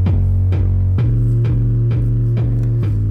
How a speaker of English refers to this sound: Man, oh man, that old school little jingle at the beginning there, it brings back memories, both good and bad, as does TNA and Impact Wrestling.